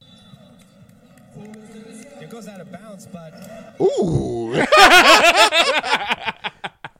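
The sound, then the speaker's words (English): A man talks over a sports broadcast, then one sharp, loud open-hand slap lands as a teenage basketball player, about 16 or 17, slaps another man during a dispute in his league, followed by an excited, rising crowd reaction that fades in bursts. “He ended up getting into some beef with a dude and ended up slapping a dude.”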